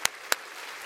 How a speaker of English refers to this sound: Won't you clap your hands because of his grace right now?